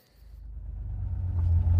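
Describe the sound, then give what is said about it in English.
A Chevrolet Corvette C8 sports car engine rumbles with a deep, low growl, swelling steadily louder over a couple of seconds as if revving up, with no one talking. “You like this car? Yes. It's a Chevrolet Corvette.”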